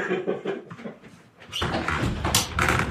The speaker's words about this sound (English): I'm just going to have to shut the window because it's about to downpour in through.